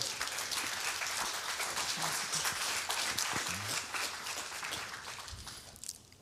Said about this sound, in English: We've got a guy that, will you clap him up, please?